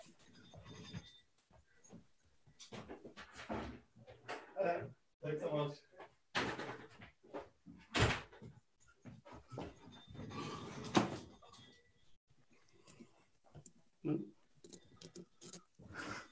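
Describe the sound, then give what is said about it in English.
A door handled as an Amazon package delivery arrives, with a sharp knock-like clunk midway and scattered thumps and rattles, while muffled voices talk faintly in the background. “It's just like an Amazon delivery at the door.”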